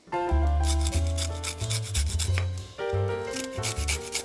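Lemon zest being grated: quick, steady rasping strokes repeating in a fast rhythm, with low, sustained tonal music playing underneath throughout.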